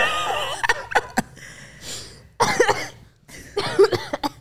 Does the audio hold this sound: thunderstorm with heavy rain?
no